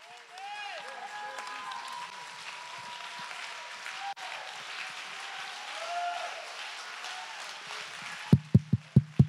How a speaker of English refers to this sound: Somebody stand to your feet and clap your hands and let these rafters roar.